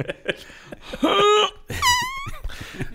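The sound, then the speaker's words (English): A comedic fart sound effect: short sputtering pops, then two drawn-out squeaky, tonal blasts whose pitch wobbles and bends, fairly loud, with no talking. “Dude, that's a very funny and very classy fart.”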